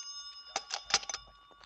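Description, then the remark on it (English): A telephone rings in a quick run of bright, metallic bell strikes, each a short burst over a steady high ringing tone, the rhythm rattling then fading out. “That's your phone.”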